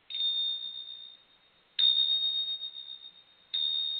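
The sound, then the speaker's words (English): Three clear strikes of new Tibetan bells, each a bright, high, sustained ring that slowly fades before the next strike, evenly spaced with no voices. “That is my new Tibetan, like, bells.”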